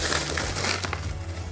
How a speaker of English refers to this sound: Basically, the first four ingredients just go right into the nonstick skillet. We've got the rolled oats.